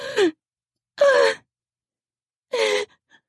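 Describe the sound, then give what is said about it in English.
Three sharp, voiced gasps of shock in response to a sharp spank, each brief with a falling pitch, spaced apart by short silences. Fairly loud, with no talking around them. “But I'm rewarded with a sharp spank instead, hard enough to make my teeth ring, and I gasp in shock.”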